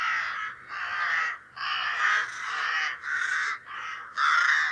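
Crows caw loudly, about seven harsh, raspy calls in quick succession with only brief gaps between them, with no one talking.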